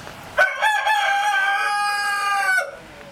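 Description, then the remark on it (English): A rooster on a farm lets out a single loud crow lasting about two seconds, starting with a few rising bursts and holding a bright, harmonic-rich note before cutting off. “They really do, and they start about 3 o'clock in the morning.”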